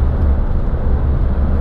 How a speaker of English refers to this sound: There is a police helicopter up here.